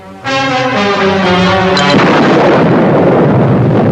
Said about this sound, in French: The A-bomb, mounted on a tower in a lagoon, turns the sky white at the moment of detonation. The device is described as one of tactical range, or smaller than a major atomic bomb.